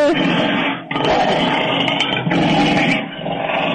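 A lion with a thief's right arm in its mouth roars and growls loudly in long, rough bursts with brief pauses between them, a deep throaty rumble filling the whole stretch.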